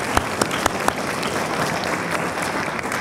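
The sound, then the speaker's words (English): An audience claps steadily to thank patrons and supporters, a dense wash of applause with a few sharp, louder claps standing out near the start, no voices heard. “Can we lift them up and with a round of applause, thank all of you for all that you've done.”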